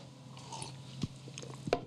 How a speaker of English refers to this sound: If you give me a second, I'm just going to sip some water.